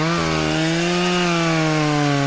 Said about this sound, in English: You just do the circle on the inside and scrape all the guts out there with the mini chainsaw.